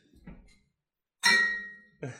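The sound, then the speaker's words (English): Glasses clink together in a toast: one bright, ringing chime that hangs and slowly fades, then a second shorter clink right after, with faint low shuffling beforehand. “Well, cheers, guys. Well, cheers.”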